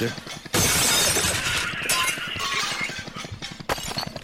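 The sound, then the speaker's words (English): Wix Cabin Tawny Beige ceramic wall and floor tiles fall off a conveyor belt and smash loudly in a sudden burst at about half a second, followed by a long rattling cascade of breaking and clattering pieces, with a second sharp crash near the end. “They're smashing everywhere.”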